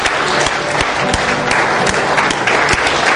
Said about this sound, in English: If you agree with me, can we just give God some applause and stand to our feet? Can we do that? Come on.